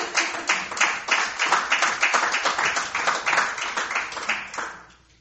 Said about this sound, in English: Can I get a round of applause for that?